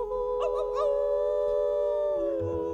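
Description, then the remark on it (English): A human voice imitates a wolf howl at the opening of a cowboy music radio program: three quick yelping rises lead into one long, steady, drawn-out howl that holds loud before sliding down at the end. “We're gonna hoot and holler and howl at the moon. Ow, ow, ow.”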